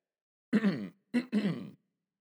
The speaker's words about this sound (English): Excuse me there. No cough button on a podcast.